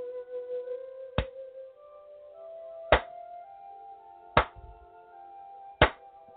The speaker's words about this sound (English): Gently, gently come round. When you hear three claps, gently reawaken.